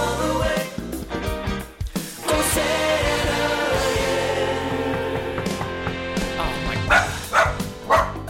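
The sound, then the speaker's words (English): A dog barks in short sharp bursts, a few near the start and a cluster toward the end, loud over steady, upbeat music playing underneath. “Every time I get trying to stop barking, let me see who this is.”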